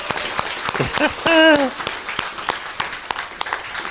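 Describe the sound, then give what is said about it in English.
A crowd applauds with steady, dense clapping throughout, while a voice briefly whoops and another exclaims partway through. “I didn't even make them clap,”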